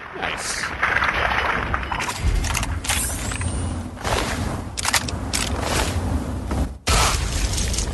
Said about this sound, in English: What was that? Did I step on a mine? I don't know what that delayed reaction explosion was.